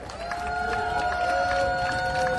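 A crowd at an event held in support of Assange applauds steadily, with dense clapping and a few sustained whistles or cheers holding above it at an even loudness throughout.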